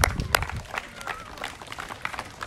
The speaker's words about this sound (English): Congrats. And yeah, congrats. You guys can give that a round of applause.